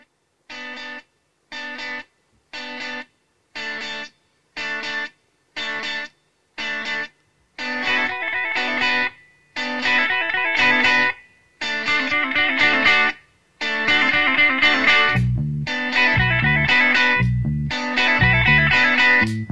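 A rock song opens with short, choppy electric guitar chords struck in a steady repeating rhythm, growing fuller and denser until bass and drums kick in near the end. No singing or talking.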